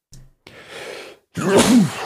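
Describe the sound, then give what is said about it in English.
A single sneeze: a breathy intake of air followed by a loud, voiced burst that trails off quickly. No one speaks. “bless you. Thank you.”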